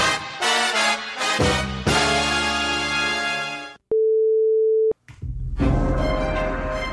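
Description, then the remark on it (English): A single loud, steady spoiler warning beep lasts about a second, a flat mid-pitched tone that cuts in between stretches of music, which stops before it and resumes right after; the beep signals listeners to jump ahead six minutes to avoid spoilers. “To avoid any spoilers, when you hear the beep, jump ahead exactly 6 minutes.”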